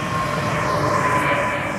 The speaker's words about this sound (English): Here comes another train. This one is going, this is a newer model, you can hear that.